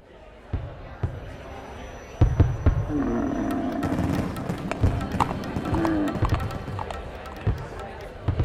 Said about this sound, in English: Fireworks boom and crackle over Jhansi as we flee, bathing the streets in green, blue, and red light.